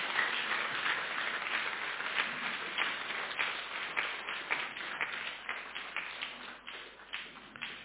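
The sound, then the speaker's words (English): A church audience standing and clapping for Jesus, a dense, steady wash of handclaps that keeps going the whole time, with a loose rhythmic pulse and no voices over it. “Come on, let's stand on our feet and clap for Jesus.”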